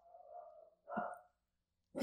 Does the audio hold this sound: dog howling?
yes